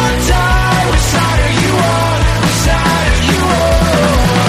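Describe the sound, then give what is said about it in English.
A loud, dense song plays throughout, with heavy driving instruments and a shouted vocal line over steady pounding low-end rhythm. “They have a music video for this song over on their website”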